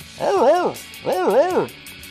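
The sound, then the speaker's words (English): A voice imitates a dog barking as a ringtone: two drawn-out, rising-and-falling bark-like calls, loud, separated by a brief pause. “Dog, full charge dog bark ringtone.”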